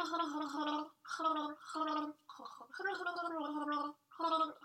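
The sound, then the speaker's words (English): Someone gargles a mouthful of water while voicing a tune, a bubbly, warbling sound in about five pitched bursts separated by short breaths, loud and steady throughout. “That was a mouthful of water.”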